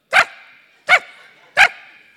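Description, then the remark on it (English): Voices imitate a chihuahua's yapping barks: three sharp, high yaps spaced evenly about a second apart, each loud with a short ringing tail. “And when we look at them and we see them, what do we do? Bark.”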